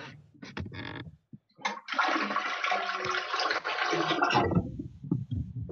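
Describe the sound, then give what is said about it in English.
A toilet flushes, a loud rushing swirl of water lasting a few seconds, preceded by some clunks and followed by a gurgling tail as the bowl drains. “Did you flush?”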